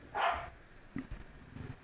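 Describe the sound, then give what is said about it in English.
A female dog gives one short, sharp bark, followed by a few faint, low sounds and a brief quieter yip-like noise. No one speaks. “Is it my dog? Is she on the list? Because she just made my list.”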